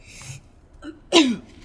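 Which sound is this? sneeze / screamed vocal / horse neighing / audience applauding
sneeze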